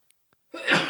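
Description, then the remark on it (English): A single loud sneeze from a person who is sick bursts out after a moment of near silence and a couple of tiny clicks, a harsh, breathy blast that holds strong through the end. “Bless you.”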